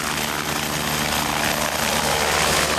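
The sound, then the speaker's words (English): An air ambulance helicopter's engine whines steadily over the dense, throbbing chop of its rotor, loud, filling the whole stretch with continuous noise and no voices. “What the helicopter brings to the air ambulance role is speed.”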